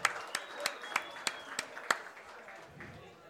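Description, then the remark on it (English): Brief applause for both sides of the fall season cheer teams, District 3 competition cheer champions: sharp, evenly spaced claps, about seven in a steady rhythm, tapering off after two seconds into a quieter background. “Everybody, let's hear it for both sides of cheer this fall season.”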